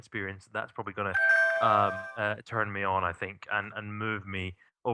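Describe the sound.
A short electronic call-timeout alert tone, a steady mid-pitched chime lasting under a second, sounds beneath a man who keeps talking throughout.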